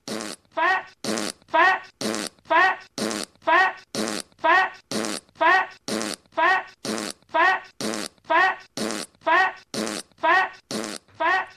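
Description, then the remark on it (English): Loud fart sounds repeat in a fast, steady loop, roughly two per second, forming an alarm-like pattern of about twenty identical bursts with brief gaps between them. “That's the fat fart alarm”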